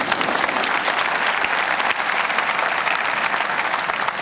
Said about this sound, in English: Thank you very much. Clap for him.